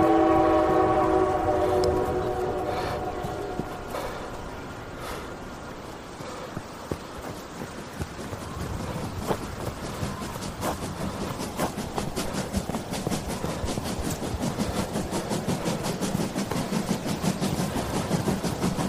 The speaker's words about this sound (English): All my pumpkins are smashing on the street from that racket! The hell? Are they visitors? Someone got a train working? If so, that's a game-changer.